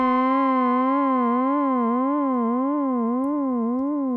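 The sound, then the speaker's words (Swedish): A steady synthesizer tone with rich harmonics wobbles up and down in pitch at a regular, slow rate, a smooth vibrato-like sweep repeating about three times per second, loud and alone; the pitch of oscillator A is modulated by a low-frequency wave as the modulation wheel is pulled up. “Så när jag drar upp modulationswheelet så ändrar vi nu på pitchen på oscillator A.”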